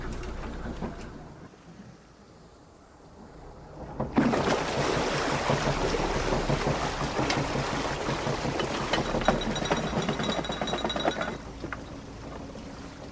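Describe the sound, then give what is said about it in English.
A canal boat motors steadily along a canal with stones and rocks on the sides of the bank, its low engine rumble constant throughout, with a louder rush of water and churning noise building after a quieter opening; no one speaks. “Jerry said he'd leave me captain for half an hour”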